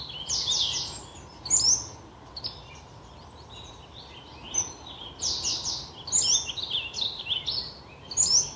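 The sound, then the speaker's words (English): Several birds sing and chirp in bright, repeated bursts of high-pitched notes, some clear, others softer, over a low steady outdoor rumble with no talking. “Feeling how the birds welcome us.”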